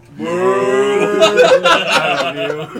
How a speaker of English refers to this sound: Nate's on the soundboard every time he hits the moo.